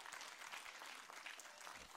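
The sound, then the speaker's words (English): People clapping steadily to applaud the Lord during a church service, a dense, even wash of many hands that keeps going at constant loudness from start to finish with no voices breaking through. “Applaud the Lord that you get to participate today.”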